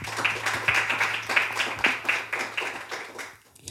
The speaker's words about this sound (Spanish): Y vamos a dar palmas al Señor por eso.